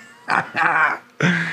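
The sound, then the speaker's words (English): A human voice mimics a mournful howl in three wavering, drawn-out bursts separated by brief pauses, fairly loud and breathy, with no words spoken. “The woods answered with a mournful howl, rustling leaves like ghostly fingers.”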